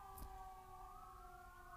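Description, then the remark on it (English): A siren wails steadily, its sustained tones holding over a low background rumble, with a brief thump early on. “Sirens, there were some sirens like 5 minutes before I started recording, so I didn't expect to hear them again this soon.”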